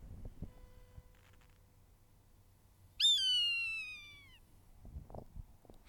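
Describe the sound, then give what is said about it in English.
A single loud, drawn-out Swainson's hawk scream, a high, harmonically rich whistle that slides slowly downward for over a second against a quiet background with faint scattered clicks. “And now, here is Swanson's Hawk Call in its entirety.”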